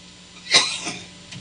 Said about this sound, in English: I'm going to cough again. Hold on.